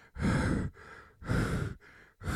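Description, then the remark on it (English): Slow, heavy, creepy breathing, loud, alternating between deep, rough breaths and softer ones in a steady rhythm, with about three full breath cycles and no talking; an attacker's breathing in a film's opening attack at a car park on Lover's Lane, heard as he breaks open the window. “He breaks open the window, mm-hmm. and you hear the breathing.”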